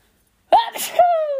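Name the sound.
sneeze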